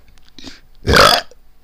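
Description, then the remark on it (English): A single loud burp erupts after a moment of near-silence, a short guttural rumble lasting about a third of a second before fading away. “Burp busters.”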